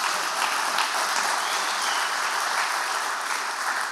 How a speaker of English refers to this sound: Can we give a great clap for our worship team, by the way?